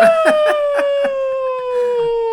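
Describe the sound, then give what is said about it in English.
A person imitates a wolf howl as a sign-off: one long, sustained, slowly falling tonal awoo, clear and fairly loud, with brief broken sounds at the start and no other talk during it. “I'm going to make you do an awoo every time we close out.”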